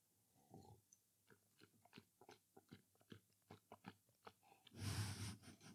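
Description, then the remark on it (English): Wet mouth sounds as a man swishes a sip of water around inside his mouth to cleanse his palate between tasting cereals, in quick rhythmic sloshes, ending with a louder, rushing gush. No one speaks. “is licking my arm as … swishes water in his mouth”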